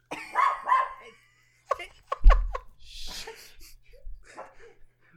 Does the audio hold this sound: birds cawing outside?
no